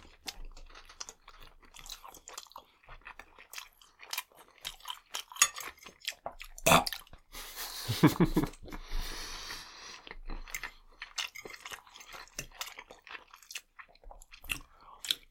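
Wet chewing of chicken pieces, with irregular soft crunches and bites, a brief louder slurp or clatter near the middle as a whole piece of chicken is slurped, and occasional utensil taps; no talking.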